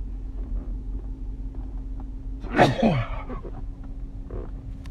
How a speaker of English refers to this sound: Sorry about that, but I'm back. I had a sneeze attack or some shit like that.